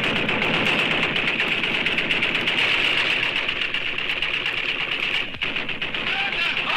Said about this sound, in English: He says listeners cherished the show's signature opening. Which featured, the AK-47 gunfire, the sound of an AK-47.